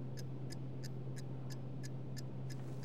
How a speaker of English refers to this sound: Helsman and Gupta return to reading the paper in silence. All that can be heard is a faint ticking from Gupta's pocket watch.